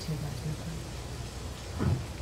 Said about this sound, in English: It's raining.